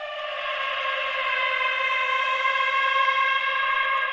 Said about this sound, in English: And the sound of whales by rubbing plastic and styrofoam together.